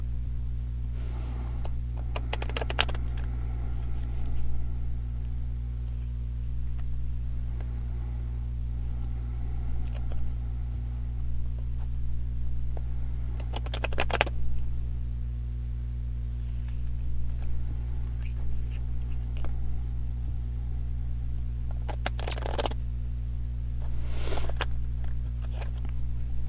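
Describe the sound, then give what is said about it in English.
A deck of cards being shuffled in several short, crisp riffling bursts, separated by long quiet gaps over a steady low electrical hum. Nobody speaks. “At any rate, I'm going to prepare the deck now and see if there's any more cards to share. So I'm going to be quiet for a moment while I shuffle and breathe and pray.”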